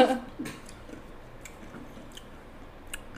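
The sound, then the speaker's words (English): Someone crunches through a raspado, a shaved-ice dessert with mango, chamoy, tajin and lemon or lime, with a series of short, crisp crackles and chewing sounds scattered unevenly over a few seconds at a fairly soft level. “Can you guys hear that crunch?”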